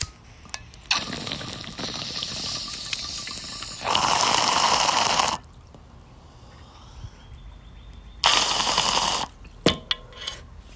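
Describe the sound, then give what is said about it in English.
Water bubbles and gurgles through a bong in two long bursts as a person takes a hit, separated by a quieter stretch with small clicks and crackles like a lighter flicking. “Okay, I'm gonna stop rambling and take a rip.”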